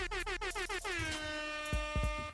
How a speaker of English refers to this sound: Air horn time.